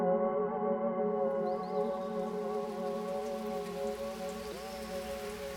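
Steady rain falls continuously, a dense hiss of drops on a surface, with a sustained droning tone layered over it. No one speaks.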